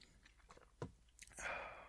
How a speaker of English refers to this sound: I don't feel it as difficult when I'm, you know, sort of consistently drinking that coffee as opposed to others, as I take a sip right now.